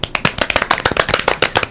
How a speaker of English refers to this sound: Golf claps and snaps for the Wallster